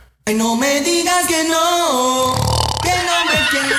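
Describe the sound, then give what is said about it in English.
A person imitates a snore with their voice: loud, throaty drawn-out tones that shift in pitch, a low rattling rumble in the middle, then a final gliding groan. “They was missing a snore from you.”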